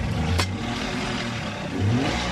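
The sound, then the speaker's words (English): A motorboat engine drones steadily, its pitch swelling as it revs and whizzes past on the clear waters of Cuicocha, a crater lagoon, while tourists line up for boat rides; a brief clatter early on and no voices. “Motorboats whiz by as tourists line up, waiting to take a ride on the lagoon's clear waters.”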